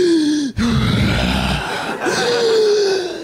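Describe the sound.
A person loudly imitates deep, sleeping breaths: groaning, wheezy inhales and exhales with a rasping, droning tone, about three drawn-out breath sounds with no talking.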